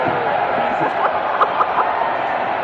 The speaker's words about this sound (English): Wonder if they're cheering for wine. I wonder if they're cheering for wine.